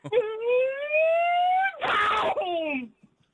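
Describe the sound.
A man imitates with his mouth the start of a Grand Prix: a long, rising buzzy engine whine of the cars taking off, then a harsh, noisy crash burst of a huge pile-up, followed by a short falling whine that fades out.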